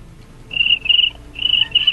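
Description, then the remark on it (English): A man imitates a cricket as his entry in an animal-impression contest, with four shrill, high-pitched chirps in two quick pairs, fairly loud, with no talking over them. “Yeah, my God, he is nailing the cricket.”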